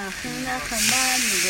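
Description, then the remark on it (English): Food sizzles and spits in a wok bubbling on a wood-burning stove at a small mosque as supper is prepared, a steady crackling hiss that swells louder midway, with faint voices murmuring underneath. “And a wok bubbling away.”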